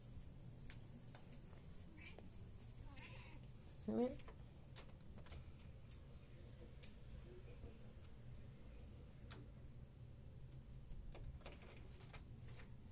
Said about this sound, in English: Let me just let the cat out. He's not having a good time. He's looking me straight in the eye, and I don't like when he does that.